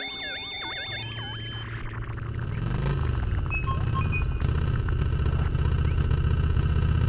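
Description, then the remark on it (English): A Magna motor scooter engine idles with a steady low rumble as a man mounts it at night, starting after a brief burst of warbling electronic tones and holding evenly to the end. “As he mounts his Magna scooter, Melvin has no idea what events are to take place this very night.”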